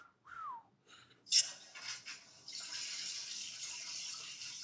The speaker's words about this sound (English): Is that a toilet flushing? I think so.